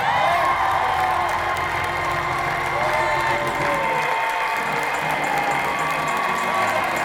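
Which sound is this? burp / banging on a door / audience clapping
audience clapping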